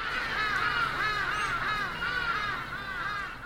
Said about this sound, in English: In the meantime, in the background, you can hear the authentic sounds of African bird life.